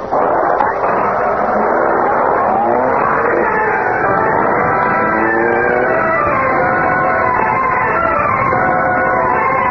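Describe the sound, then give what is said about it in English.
A car engine roars and revs up, its pitch climbing as the vehicle accelerates away, loud throughout with steady motor noise and no voices. “Follow that car.”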